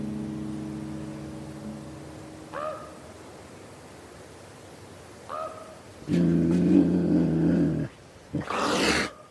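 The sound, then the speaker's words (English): A mountain lion growls: a low rumble, a couple of short yowling calls, then a loud sustained snarl ending in a harsh, breathy hiss, clear with no talking. “That particular night, like, my tent was stalked by two mountain lions.”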